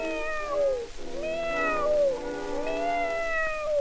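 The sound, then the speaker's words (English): A cat meows three times in a row, each call a drawn-out, rising-then-falling wail. The meows are fairly loud, with no voices alongside them. “I've got here a little pussy cat for what goes.”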